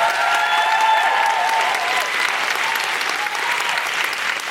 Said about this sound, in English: Could I have a big, big round of applause for Dr. Bob Gill?